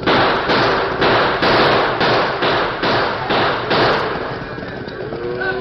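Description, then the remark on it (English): A rapid, evenly spaced volley of about nine loud gunshots cracks over a steady rumbling roar of stampeding Hereford cattle, then the shots stop and the rumble carries on alone. The guns are fired so the noise makes the herd swing east before it reaches the creek. “Use your guns. I'll do the same thing. Noise will make them swing east before they reach the creek.”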